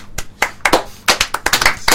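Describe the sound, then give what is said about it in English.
In the Livewire radio studio during an end-of-year party show, several people clap in quick, uneven bursts, a loud scattered patter of sharp hand claps lasting a couple of seconds, with no clear voices or cheering standing out. “Everyone cheer.”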